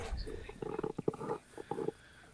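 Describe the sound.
A person does a loud impression of a horse's whinny, a fluttering run of pulsed vocal bursts lasting just over a second, with no other talking.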